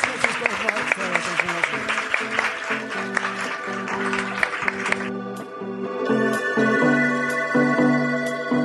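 A burst of audience applause for the authors at a Politics and Prose event, dense steady clapping for about five seconds over a low musical tone, then the clapping fades out and a sustained, bright instrumental music bed continues alone.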